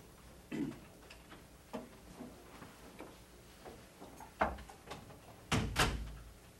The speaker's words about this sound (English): will you shut the door, please? Thanks.